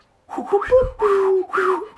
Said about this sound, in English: That was the most violent failed whistle I've ever. I can whistle, dude, alright?